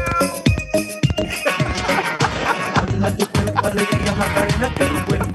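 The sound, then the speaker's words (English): A cat meows repeatedly at close range, its drawn-out, pitch-bending cries following one another over a busy, steady background, with no one speaking. “The perfect filler. Meow. I'm glad you heard that.”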